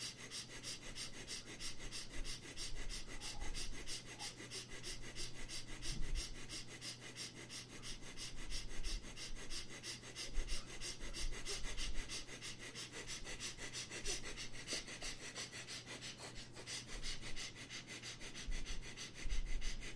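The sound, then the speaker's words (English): Rapid, short breaths sniffed sharply in and out through both nostrils into the chest in a steady, fast rhythm, continuing without pause for the whole stretch, fairly quiet with no talking. “Again, start breathing quick, short, and the fast breath from the into the chest from both the nostrils.”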